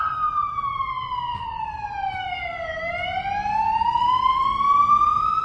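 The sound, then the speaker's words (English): An emergency vehicle siren wails loudly, its pitch sweeping down and then climbing back up, growing a little louder toward the end with a low rumble of traffic beneath and no talking. “Pause for siren.”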